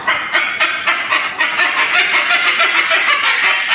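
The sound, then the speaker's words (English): A voice imitates a clucking chicken, loud rapid squawky clucks in a quick rhythmic burst that runs without pause for several seconds. “No more bird. The bird is done. I gotta do for one final time.”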